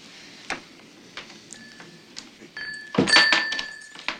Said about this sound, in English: Door sticks.